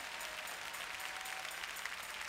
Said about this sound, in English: Would you clap your hands and help me praise God?